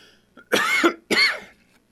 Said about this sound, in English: Boy, the cough man returns, huh? I tell you what, I apologize for my coughing, but hey, what do you got to do?